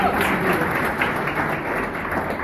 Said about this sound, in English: Let's clap our hands.